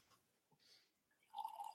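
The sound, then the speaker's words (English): Coffee poured into a cup: a short, quiet trickle with small clinks and splashes that swells into a brief gurgling pour at the end. No one speaks. “So I guess I so hope that you're pouring something to drink because otherwise I don't want to turn your microphone off.”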